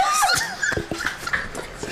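A dog whines and yips in short, high-pitched bursts, a few quick yelps breaking up a thin, wavering whimper, moderately loud over a faint background.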